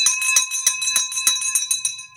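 A handheld victory bell is rung rapidly and loudly, about a dozen bright metallic strikes in quick succession, each clang overlapping the lingering ring of the last, with no one talking.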